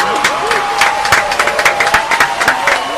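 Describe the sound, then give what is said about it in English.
A crowd claps for a caller from Alabama, a dense, uneven patter of sharp hand claps throughout, with a sustained whistle-like tone and some cheering voices mixed underneath. “Hey, y'all, clap your hands for him, man.”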